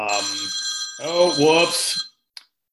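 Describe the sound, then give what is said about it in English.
A phone that was not on silent rings loudly and steadily with its ringtone for about two seconds, with a voice murmuring underneath. It cuts off abruptly, followed by a single soft click. “I didn't have my phone on silent.”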